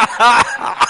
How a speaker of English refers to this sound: Now you're making me cough.